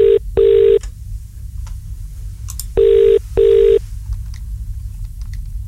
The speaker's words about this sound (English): So we are going to give the biggest mug a call right now